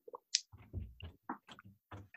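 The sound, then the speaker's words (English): Someone drinks water, with a series of wet sips and gulping swallows in an irregular rhythm, fairly quiet and with no talking. “This segment is when I drink water.”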